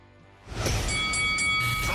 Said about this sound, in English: ring the bell.